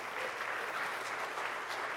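Steady audience applause fills the moment, a dense wash of many hands clapping at moderate volume with no single claps standing out and no voices over it.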